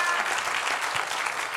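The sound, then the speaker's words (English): An audience claps hands together as an offering of praise to the Lord during a sermon, a dense, steady wash of applause, loud and continuous, with many overlapping claps and no clear rhythm. “Come on, give the Lord a clap offering of praise for a moment.”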